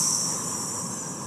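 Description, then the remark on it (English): A person hisses like a snake while doing a character as a snake, a steady, sharp, high-pitched sss held for just over a second without a break, fairly loud and with no other voices. “Sorry, I did that in the character as a snake.”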